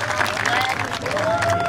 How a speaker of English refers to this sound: Ladies and gentlemen, put your hands together one more time for your Megalith UMP Modified feature winner,